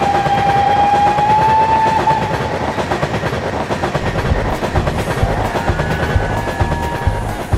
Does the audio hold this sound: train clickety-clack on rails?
yes